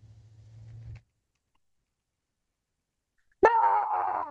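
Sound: person imitating a chicken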